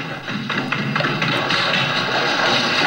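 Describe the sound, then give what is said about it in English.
Footsteps climb an echoey staircase, a steady series of sharp taps about every quarter second, ringing out over a constant dense background hiss. “Very echoey staircase.”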